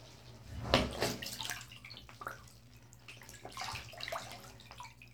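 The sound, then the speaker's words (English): Water sloshes and splashes in a bathtub as a person submerges in it, with one louder splash near the start followed by softer, irregular lapping and trickling over a faint low hum. “I want you to submerge yourself deep into the water. And now I'd like you to dip your head all the way in.”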